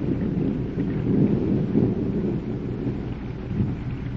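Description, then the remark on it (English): Low, rolling thunder rumbles continuously beneath a steady wash of heavy rain, loud, with no voices present. “Oh, now, good Lord, please send us a flash of lightning.”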